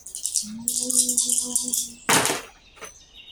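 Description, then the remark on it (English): Five dice rattle and clatter together for about two seconds, then land with a louder sharp burst and a final small click as they settle, over a faint low steady hum. “Okay, so I get 5 dice?”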